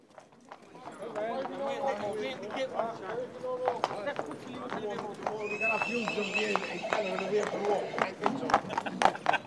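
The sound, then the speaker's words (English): Horses neigh and whinny over a busy stretch of hooves clip-clopping on hard ground, with a crowd talking throughout, at the annual horse fair on the main street of Banagher. “Today is the annual horse fair.”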